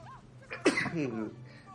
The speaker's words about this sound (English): Gesundheit.